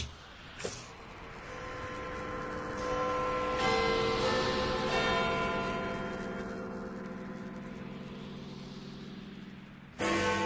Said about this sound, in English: The clock strikes one. The very hour Jacob told me the first spirit would come upon me.